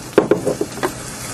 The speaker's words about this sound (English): I hold the mic down, like, near the frying pan with the eggs in? No, the way, they're not going to make that much noise the way I do it.